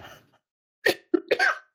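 A short fit of coughing from a person who has had COVID for two weeks: three harsh coughs in quick succession, the last one drawn out and raspy, after a brief quiet moment. No one speaks.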